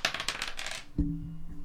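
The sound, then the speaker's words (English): Dice rolling: bright rattling clicks of small hard objects tumbling across a surface for most of a second, ending in a single thud and a low resonant ring. “Let me see if I can get the mic to get the sound of the rolling dice.”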